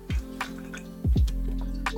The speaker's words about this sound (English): Time to take another hydration break, folks. Do it with me if you have one at home. Let me know in chat or in the comments below what you're drinking these days.